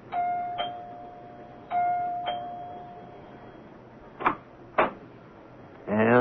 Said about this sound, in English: It is the next morning, and Dr. Lem Regan rings the doorbell of Clyde Wilkins' house.